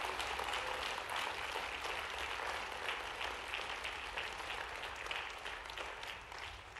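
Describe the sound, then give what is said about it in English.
Sustained applause from a large crowd giving a clap offering of praise to Jesus, a dense, steady wash of clapping that holds strong throughout and eases slightly at the end, with no voices standing out. “Could you put your hands together right now and give a clap offering of praise to Jesus?”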